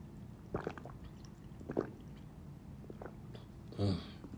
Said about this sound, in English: Sorry, still feeling that summertime heat, so you heard me gulping down some H2 Izzo.